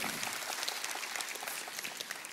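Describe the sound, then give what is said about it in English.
An audience at SIBKL bursts into sustained applause as a clap offering to God, a dense, steady wash of many hands clapping at once with sharp, crackling detail and no pauses. “Come on, let's give God a clap offering for that.”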